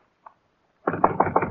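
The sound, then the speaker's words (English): A faint single tap, then a quick, steady run of four or five firm knocks on an office door, fairly loud, with no voices. “We'll knock.”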